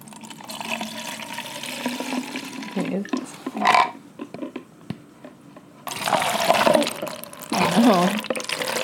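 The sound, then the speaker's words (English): A beverage pours in two separate bursts, a steady splashing stream into one glass, a short pause, then a second pour into another glass, with faint voices in between. “Okay, and I'm going to pour now.”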